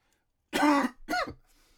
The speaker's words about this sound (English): I don't have corona. I just have to throw that out there, man. I think I have like a smoker's cough because, you know, I've been at home a lot more, so I got shit else to do at certain times when I'm not working, all right?